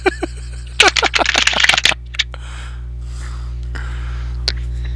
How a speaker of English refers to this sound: I'm just shuffling my Antarctica-sized cards.